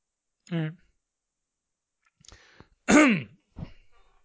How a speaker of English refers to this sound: All right. Clearing the throat. Let me clear my throat.